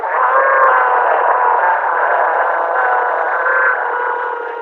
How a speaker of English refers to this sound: A return of the horrific sounds of the electric hum and an ear-splitting, high-pitched wail.